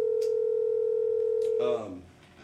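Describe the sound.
A steady telephone dial tone hums loudly and evenly for nearly two seconds as a call is redialed, then cuts off as a voice briefly begins speaking over the line.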